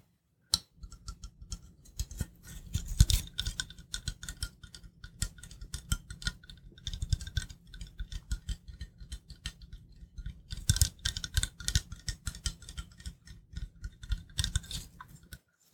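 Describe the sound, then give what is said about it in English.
A metal spray bottle of water is pumped over and over, with quick crisp clicks and short hissy bursts in rapid, uneven runs that surge and ease off. There is no talking. “I've got a different water bottle with me now. It's a metal spray bottle.”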